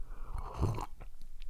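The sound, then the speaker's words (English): Quiet slurping of black coffee: a brief sip, then a longer one, followed by a few faint mouth clicks and swallows. No one speaks. “I'm going back for two sips.”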